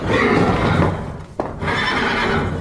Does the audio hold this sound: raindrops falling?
no